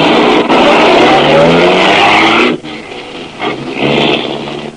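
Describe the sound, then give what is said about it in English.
A car engine roars loudly with tires squealing and skidding for over two seconds, then the motor drops off sharply and keeps revving unevenly as the vehicle pulls away, driving back to DeWitt's office. “I drove back to DeWitt's office, got there just in time for a nice little scene.”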